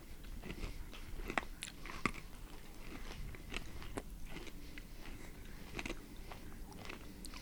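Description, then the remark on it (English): Crunchy biting and chewing of an almond cookie snack, with repeated sharp crackly crunches in an irregular rhythm, fairly quiet and with no voices. “It's crunchy. It's got good texture. It's very crunchy.”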